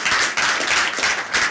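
A crowd applauds with steady, dense clapping that fills the moment at a fairly loud level, many hands overlapping into a continuous wash with no voices, welcoming a panel member at a design talk.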